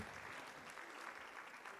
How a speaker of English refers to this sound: Would you give the Lord a hand clap one more time as you're seated tonight?